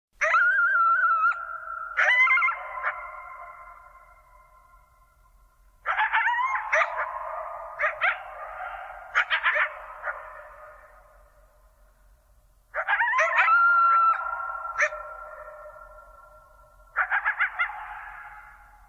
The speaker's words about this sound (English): there's not one coyote, but there are two. And they're singing to each other after a long season of prosperity. And to me, it sounds like a celebration.